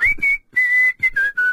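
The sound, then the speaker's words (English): A person whistles a short song melody, a handful of clear sustained notes shifting in pitch, with brief breaths between phrases and no talking. “I've never whistled that before, but it's easy to do.”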